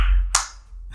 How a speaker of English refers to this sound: You clapping like me?